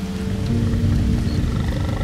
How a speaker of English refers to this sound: It was a deep warbling, almost like the beginning of an earthquake, low and rhythmic. It got louder for a moment, then stopped as suddenly as it began.